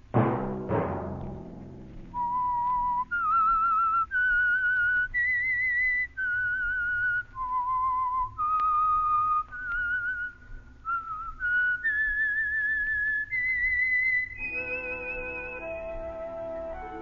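Someone whistles the theme of the Signal Oil radio program The Whistler, a slow, haunting tune of long held notes with slight vibrato, clear, over a low, steady musical backing that swells into a fuller chord at the end.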